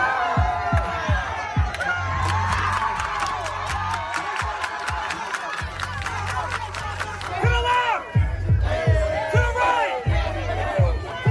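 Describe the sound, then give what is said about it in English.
A loud, unmasked protest crowd at a rally calling to defund the police in Logan Square dances, shouts and chants over a steady, pounding beat, voices rising and overlapping in an energetic, dance-like din throughout. “No masks, dancing, shouting.”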